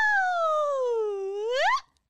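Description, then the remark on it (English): A single voice does a siren-style vocal warm-up, a steady hum gliding slowly downward in pitch before swooping sharply back up and cutting off, with no other sounds. “And you do a sirens, you go.”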